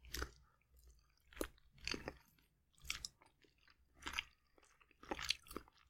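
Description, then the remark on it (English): Chewing of turnip cake made of daikon radish with sausage in it, soft wet bites with a slight crunch repeating roughly once a second in a steady rhythm, with no talking. “It's just a sound of chewing now.”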